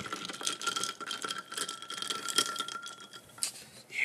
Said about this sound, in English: Ice. You hear the ice? You hear the ice? It's Bang Energy.